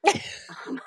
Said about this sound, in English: Bless you.